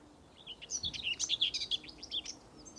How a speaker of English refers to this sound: Some loud birds out here today. Can you keep it down? I'm trying to do a podcast.